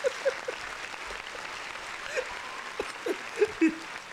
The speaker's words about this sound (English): Now, granted, at least you lasted under an hour. So, round of applause for that.